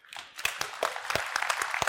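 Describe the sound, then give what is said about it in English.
A church crowd at UBC applauding its elders, pastors and staff, a dense patter of many hands clapping at once, with sharp individual claps standing out from the steady wash of sound. “You can applaud for them.”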